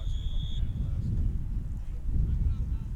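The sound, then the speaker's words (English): Steady, buffeting wind rumbles against the microphone outdoors on top of a stadium press box at a football game, a loud low roar that swells and dips in gusts, with a brief faint high whistle near the start. “It's beautiful, but it is windy.”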